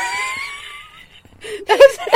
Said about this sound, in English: Only that, it was a wet burp.